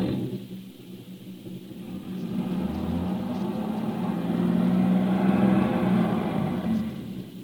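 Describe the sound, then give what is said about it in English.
A car stuck in a ditch churns and revs its engine in a low, steady rumble that swells louder toward the middle and stays heavy, like wheels straining without getting anywhere. No voices are heard. “Come on, start the car. But I'm telling you the truth. We're stuck in this ditch.”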